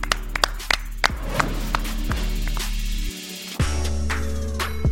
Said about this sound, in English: Clap it up. Clap it up.